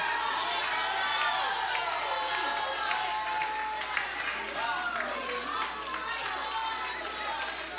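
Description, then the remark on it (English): A church audience at Fellowship Church shouts praise to the Lord together in a dense, sustained roar, with scattered higher cries and some clapping mixed in, holding steady and loud throughout. “If you believe it, give the Lord a shout of praise.”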